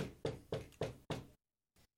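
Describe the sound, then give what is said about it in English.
Five firm knocks on a door in quick, even succession, fairly loud, followed by a pause and a brief faint sound. “I'm gonna walk up to the door and knock on it.”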